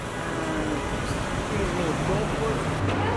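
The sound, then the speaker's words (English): A BMW car rolls up at the valet, its low engine hum blending into steady outdoor traffic noise, with faint voices murmuring in the background. “And now we're checking out, waiting on the valet. I have to admit, I am kind of digging the valet.”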